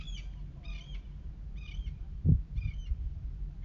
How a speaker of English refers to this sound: Like, oh my gosh, these fucking birds.